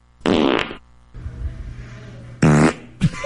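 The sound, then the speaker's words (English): Two loud flatulent blasts with buzzy, rippling tones, the first around half a second long, separated by a stretch of low rumbling noise, followed by a short final sputter; a fart recorded on April 21st, 2020. “See, it's a solid fart.”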